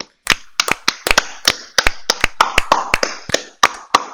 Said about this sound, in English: I think it is the best Twilight Zone episode, which means we're going to clap it out for it.